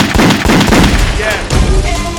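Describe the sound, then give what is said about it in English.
Several loud, sharp gunshot sound effects crack out at irregular intervals, layered over a dense, noisy backdrop with faint tonal sounds toward the end. “Yeah, where the gunshot there?”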